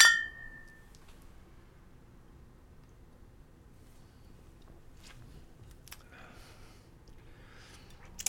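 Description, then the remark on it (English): Beer bottles of a pumpkin-flavoured fall beer clink together once in a toast, a bright ringing tap that fades within a second, followed by quiet with a few faint handling noises. “So cheers. Cheers.”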